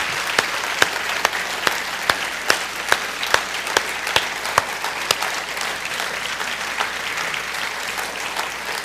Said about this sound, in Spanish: Si le vas a dar un aplauso a Él, dale el mejor aplauso que tú tienes.